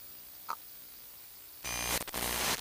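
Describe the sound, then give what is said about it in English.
After a near-silent stretch with one faint blip, a loud burst of harsh radio static bursts in, briefly dropping out a couple of times before surging back. “There's some weird interference. Cutting in and out.”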